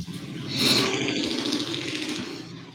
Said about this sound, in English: Jeez. Every week we got that same truck drive by, huh? Man, it's Tennessee.